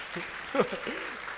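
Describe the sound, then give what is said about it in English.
Steady applause from an audience, a dense wash of many hands clapping at an even level, with a voice briefly rising over it. “You are clapping, clap.”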